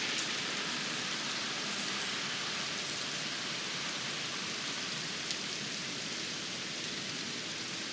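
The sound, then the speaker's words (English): Steady rain falling outside a window, recorded through the opened window, in an even, continuous hiss with dense patter of drops and no voices, holding the same moderate level throughout apart from one brief sharper tap; a car drives by and some birds can be heard. “Let's sit and listen to the sound of rain for just a moment.”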